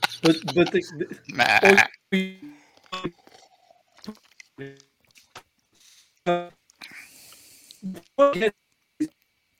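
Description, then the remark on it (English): A remote voice breaks up into choppy, garbled fragments, cutting in and out abruptly with stretches of dead silence between the bursts, like a call dropping out over a bad connection. “Here we go with that great network stuff. I totally lost Jim.”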